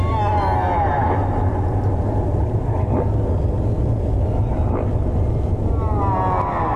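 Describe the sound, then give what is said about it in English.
A deep whale call drones through a steady low underwater rumble, with faint rising and falling moans sweeping in near the start and again at the end. “And should we have a listen to not Barry Harris but the … of the Whale World again, just to see how deep he goes in?”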